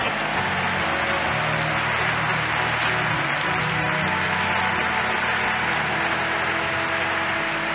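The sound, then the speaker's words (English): A crowd applauds steadily for about eight seconds, a dense, loud wash of many hands clapping, with a faint low hum running underneath and no one speaking. “Give him a clap off.”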